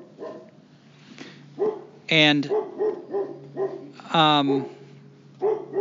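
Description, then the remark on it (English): Two loud, drawn-out barks from Sherlock the dog ring out a couple of seconds apart, each with a rising harmonic whine, while a person talks quietly in the background between them. “Sherlock's barking.”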